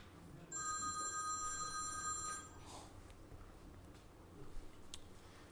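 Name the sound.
telephone ringing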